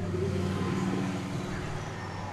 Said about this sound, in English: It says a motorcycle with a radio. Why do people do that? Absolutely stupid.